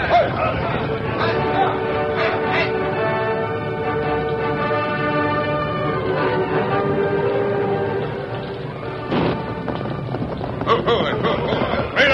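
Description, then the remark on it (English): Riders on horseback drive a herd of ranch cattle away, with drawn-out lowing over a steady rumble of hooves and clopping horses, the busy commotion continuing throughout with brief louder bursts near the end. “And when they left, they took the Bar C cattle with them.”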